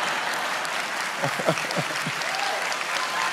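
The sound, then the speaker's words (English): An audience applauds in a steady, dense wash of clapping that holds even throughout, with a few brief voices murmuring underneath partway through. “I thought you'd applaud it, though.”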